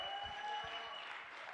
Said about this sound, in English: Give a hand clap to Jesus this morning.